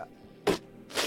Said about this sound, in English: And I just sneezed all over your hands.